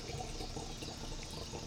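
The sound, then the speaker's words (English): A drink being poured by a bartender: a steady, unbroken stream of liquid splashing into a glass, fairly quiet, with no one speaking over it. “It should be like a perfect pour if you do it right.”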